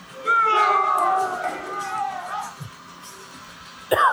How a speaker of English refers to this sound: Just got booed.